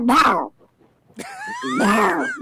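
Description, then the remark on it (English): A person mimics a female duck's quacking: loud, nasal, harmonic calls in two bursts separated by a short pause, the second call longer with rising and falling pitch. No words are spoken. “It's the female duck saying.”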